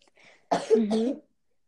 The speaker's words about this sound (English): I'm coughing now. Sorry about that. Excuse me for a second.